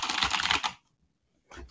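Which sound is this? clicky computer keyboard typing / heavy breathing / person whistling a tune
clicky computer keyboard typing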